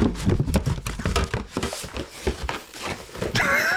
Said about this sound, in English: Sorry, I was in the process of rummaging around in the box